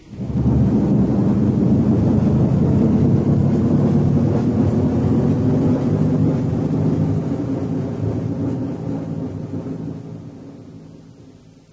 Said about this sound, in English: Right, the hull doors are open. 5 seconds to main engine burn. From now.